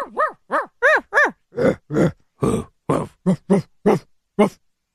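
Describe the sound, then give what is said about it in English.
A person on a radio show imitates a dog barking, giving about a dozen short, voiced woofs in a loose rhythm, the first few high and yelping, the later ones deeper and gruffer, fairly loud. “They have a radio show and they're just barking.”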